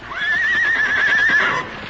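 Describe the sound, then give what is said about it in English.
Tonto's frightened horse whinnies loudly and shrilly for over a second, a single sustained, wavering neigh, trailing off abruptly with faint background noise and no talking. “What scared Tonto's horse?”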